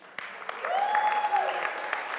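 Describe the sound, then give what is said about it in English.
The men of the Bread of Life audience clap steadily for the ladies, a dense, continuous patter of many hands that swells slightly after the start, with a sustained high whistle-like tone rising over it midway. “Men, let us clap for our ladies.”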